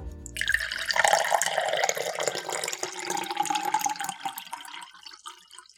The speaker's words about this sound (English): Water.